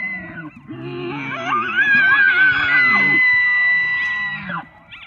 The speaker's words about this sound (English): No, that's actually a recording of an elk from the National Park Service. They only call out like that in the fall.